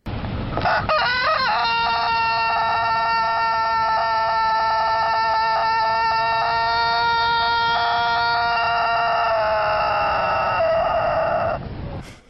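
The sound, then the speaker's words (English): A Turkish long-crowing rooster lets out a single sustained crow of about twelve seconds, holding steady and loud, with a rich harmonic tone that wavers slightly and drops off at the end. “That's a 12-second crow there.”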